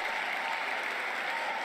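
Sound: applause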